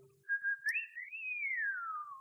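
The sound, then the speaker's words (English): A single clear human whistle, starting steady, sliding upward with a brief warble, then gliding slowly downward in one long unbroken tone, heard alone. “Some of you need to whistle to chase girls.”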